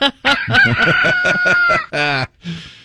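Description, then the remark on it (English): A rooster crows loudly, one long, strained, pulsing call that holds steady before breaking off, followed by a brief harsher squawk and a faint trailing note. “Oh, yeah, when the rooster crows, that means you got to go to the bathroom.”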